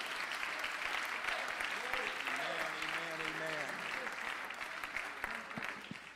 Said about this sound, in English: If you believe God's going to do something great, would you clap your hands one more time before you're seated?